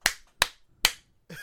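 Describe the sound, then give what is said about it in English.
Three sharp hand claps in a steady rhythm, each crisp and distinct, followed by a brief start of someone's voice. “That's what I get clapped.”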